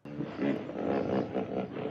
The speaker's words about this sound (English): Hippo noises mean no. Hippo means no. Hippos are not good. No.